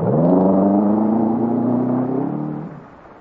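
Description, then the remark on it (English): A car engine revs up with a rising growl, holds a strong steady roar while accelerating, then fades as the car speeds off in a chase, fleeing pursuers. No voices are heard. “I drive fast enough to keep out of range, but not fast enough to lose them.”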